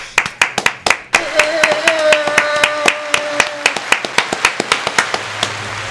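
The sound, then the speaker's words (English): Sharp, loud hand claps for a man's birthday, in a steady, quick rhythm of about four per second, continuing throughout, with a sustained high vocal whoop rising over the clapping midway. “Hey, somebody give him a round of applause.”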